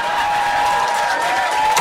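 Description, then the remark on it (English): Steady applause from a panel show audience, a dense, even patter of many hands clapping without pause, with a faint sustained hum underneath and no one speaking. “James, if you have funny things to say, may I suggest waiting for the applause to die down?”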